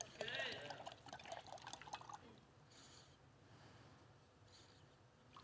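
A gallon of water pours noisily into a jar for about two seconds, a splashing gush with a rising gurgle, then fades to quiet with faint soft sounds.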